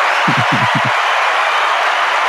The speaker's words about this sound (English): I have a soundboard, right? I have claps ready. It's the first time I ever used it.